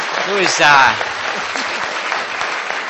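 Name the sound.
audience round of applause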